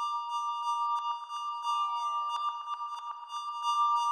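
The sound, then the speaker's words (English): A soft, sustained synth-like metallic tone from an 808 cowbell with a softened attack, used as a background synth sound in a music track, with steady pitched partials, smeared by reverb and echoing delay, with faint rhythmic pulses and a brief descending pitch sweep; no voices. “But by adding some reverb, delay, and softening the attack, I made it into kind of a background synthy sound.”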